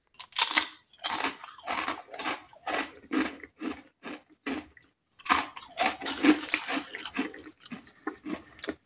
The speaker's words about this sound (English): If you have tried eating crisps in a cinema, you'll know how very loud they are, and how annoying it is for everyone else watching the film. Walker's plain crisps have a decibel rating of 70.6. That's louder than the noise of a vacuum cleaner.